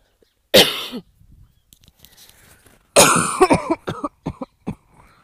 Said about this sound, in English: sorry, coughing. I might need to get a drink and come back.